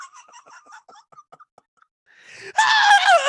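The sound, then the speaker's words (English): After a few short, choppy vocal bursts and a brief pause, a person lets out a loud, shrill, sustained scream, imitating a woman screaming. “Just like her screaming.”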